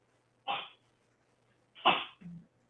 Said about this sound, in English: Sorry, I have a dog coughing a lung up here.